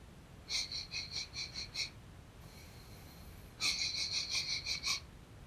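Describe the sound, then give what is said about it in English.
A person imitates a dog sniffing in the snow for the scent of a child: two quick bursts of about seven short, breathy sniffs each, separated by a brief pause, moderately loud with no talking. “He walked around in the snow, sniffing, and he smelled where the spot was strongest”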